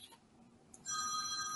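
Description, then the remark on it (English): A telephone suddenly starts ringing after a moment of near-silence, a loud, steady electronic ring with bright tones that carries on to the end, with no one speaking. “I'm sure they learned how to call on the phone.”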